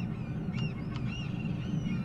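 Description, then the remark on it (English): Several short, high bird calls from a video game's audio chirp and squawk over a steady low rumble, a few sharp cries standing out among thinner whistling tones, with no one talking. “Those birds are very loud.”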